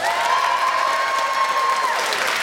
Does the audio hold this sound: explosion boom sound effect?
no